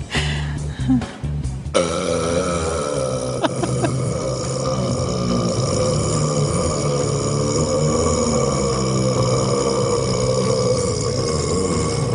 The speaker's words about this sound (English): You're watching history, ladies and gentlemen. History is being made here today. You can tell your grandchildren that you were here at the first World Burping Championship.